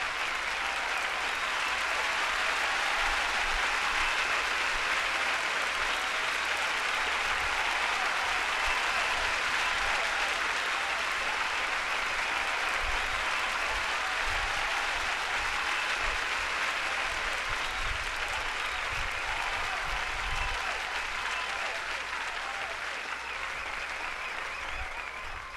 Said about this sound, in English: I applaud you. You deserve a big round of applause, so I'm going to play it out and I'm going to stay quiet.